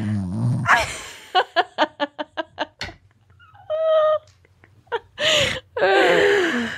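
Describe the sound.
A voice fakes snoring: a quick run of about eight short grunting pulses, then a whiny tone and loud, rasping breathy snorts drawn out at the end.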